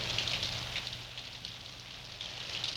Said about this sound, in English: Stinking rain.